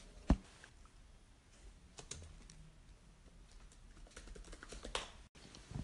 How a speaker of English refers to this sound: Sorry about those keyboard noises. Anchor decided to act up, Anchor being the app I recorded this podcast on. What I was looking up was the DJ air horn sound effect,